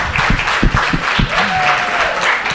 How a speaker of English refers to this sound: Thank you to our panelists here today. How about a nice round of applause for them?